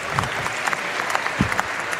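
An audience claps steadily, a dense wash of many hands applauding at an even, moderately loud level without a break.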